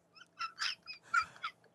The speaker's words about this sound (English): He's sound asleep on the floor across the room and he's barking. Is he still sleeping? Yeah. That's amazing. He's like, geez, almost got that bunny.